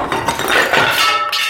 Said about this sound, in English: You guys okay? Yeah, back up a bit. Around here, out of the dust. So, part of the wall or roof collapsed.